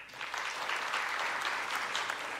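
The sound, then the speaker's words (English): A crowd claps steadily to show how many of them are on Facebook, a dense wash of many overlapping hand claps at an even, fairly loud level throughout, with no pause and no voices rising above it. “How many of you are on Facebook, if you'll clap?”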